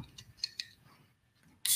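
opening a beer can

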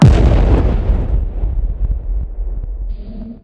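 bomb explosion

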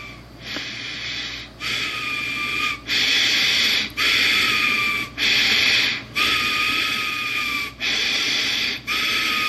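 whistling nose

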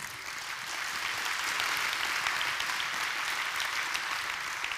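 church audience applause

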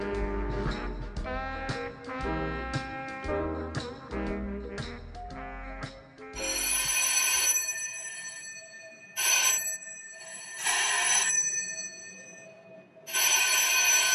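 telephone bell ringing

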